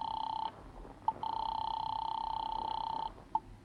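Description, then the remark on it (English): A steady electronic tone hums from a telephone in a drugstore phone booth, breaks off briefly around a sharp click, then resumes before cutting out, followed by another click as a number is dialed. No one speaks. “At 7:30, you stop the car a block away from Millie's apartment and hurry into a drugstore phone booth.”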